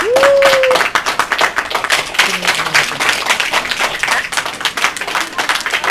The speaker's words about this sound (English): Clap. Okay. May clap yan, magkagalala.